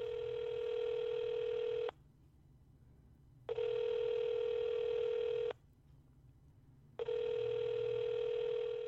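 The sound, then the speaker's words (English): An outgoing phone call to Kevin T. Porter: the ringback tone sounds in three long, steady bursts separated by short silences, clear and fairly loud with a low hum beneath and no voices. “It's ringing.”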